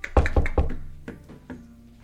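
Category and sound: impact, knocking on a door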